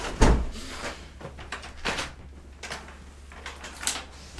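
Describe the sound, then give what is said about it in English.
A door opens with a sharp thud near the start as someone comes through, followed by a few softer knocks and shuffling movements, with no one speaking. “just going to come through now. That's okay. Come on. On the door.”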